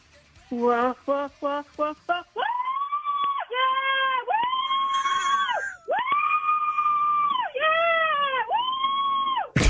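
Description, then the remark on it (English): A woman on the phone in a screaming matchup imitates a roller coaster scream, starting with a few quick yelps and then letting out long, loud, high-pitched shrieks that swell and dip. “give us your best roller coaster scream.”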